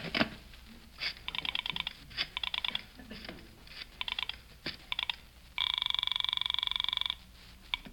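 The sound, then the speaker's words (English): A telephone being dialed to call the Palm Springs police station: a quick run of short beeping key tones and clicks, then a sustained buzzing tone for over a second, followed by a few more clicks. Clear, with no talking. “I knew I'd need all the police help I could get on this case, so I went to the phone.”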